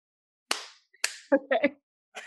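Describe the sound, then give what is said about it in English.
Two sharp, loud hand claps, made after a countdown to sync a recording, land about half a second apart, each ringing briefly before fading, followed by a short burst of voice and one more quick sound. “So you're going to three, then two, clap.”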